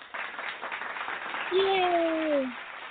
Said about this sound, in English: We're going to throw some claps on it for you.